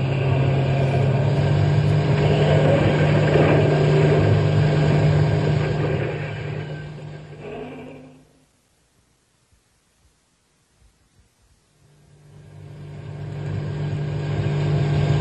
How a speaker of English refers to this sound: Step on the gas. You'll get out of the park and then we can think about who the next. Go faster.